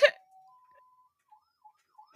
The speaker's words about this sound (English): You can, you can hear that, huh? That's that ambulance toy.